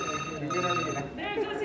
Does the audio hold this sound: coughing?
no